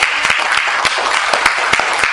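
A church audience claps hands for Jesus in a loud, steady wash of applause, with sharper individual claps popping out of the dense crackle every few beats.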